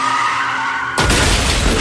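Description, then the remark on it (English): A car's tires screech in a loud, sustained skid as its driver, distracted reaching down for a dropped phone, slams headfirst into another car, an SUV; a sudden violent crash of crunching metal and breaking glass bursts in and roars on. There is no talking. “dropped it on the floor, reached down to pick it up, while simultaneously slamming headfirst into another car.”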